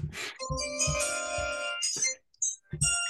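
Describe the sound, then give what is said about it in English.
A bright, ringtone-like electronic chime, played as a host chimes in to announce the Detroit Lions' 18th pick in a draft, plays a short melodic jingle of sustained tones over low thumping beats, pauses briefly, then ends with a few quick tonal bursts. “I'm going to chime myself in real quick.”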